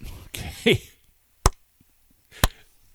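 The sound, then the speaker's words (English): A brief burst of voice opens, then two sharp, loud hand claps ring out alone, spaced about a second apart, each a crisp single smack. “Okay, I'm going to do my clap.”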